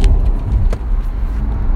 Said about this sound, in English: Hopefully you can actually hear me, because I'm in the car right now,